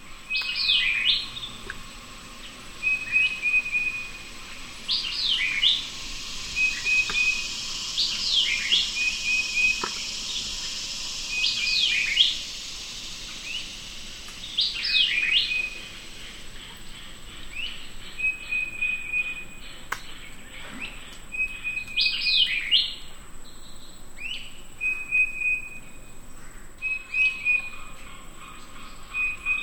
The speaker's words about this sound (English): titmouse, a white-eyed vireo, a northern cardinal, a red-bellied woodpecker, and an American crow, supported by a backup chorus of cicadas and frogs. Lang Elliott was there with his recording equipment as the sun rose above the big cypress preserve.